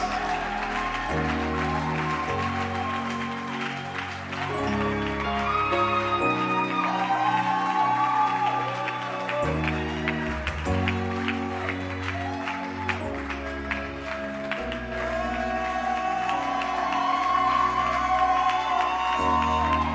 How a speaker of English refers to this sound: Clap your hands. Clap your hands.